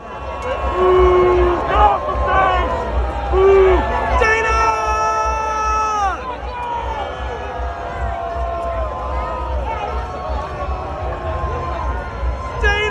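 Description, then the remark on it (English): A large crowd at an art festival boos Michigan Attorney General Dana Nessel off the stage, loudly and steadily, a dense wash of many sustained, wavering voices with scattered shouts and whoops rising over the din throughout. “This is Dana Nessel getting booed off the stage.”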